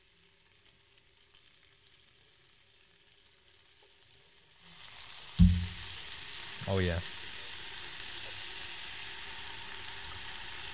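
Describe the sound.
A quiet room gives way to a sudden loud hiss as bacon hits a hot pan, then a steady, crackling sizzle continues close by while someone briefly speaks.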